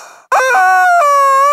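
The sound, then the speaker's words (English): A loud, sustained squawk from a squeezed rubber chicken toy named Edwina, used as a lightning round notification, starting with a sharp onset and holding a strained, wavering high pitch with a brief break midway before continuing. “She's a rubber chicken.”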